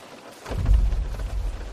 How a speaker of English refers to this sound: Those thumps are redwood trees falling.